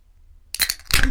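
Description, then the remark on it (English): A Southern Brewing Red and Black beer being opened: a sharp metallic click followed by a short burst of fizzing hiss, then a second gush of hiss after a brief pause. Quiet beforehand, with no voices. “And on that note, hold on, listen. I'm opening a Southern Brewing Red and Black.”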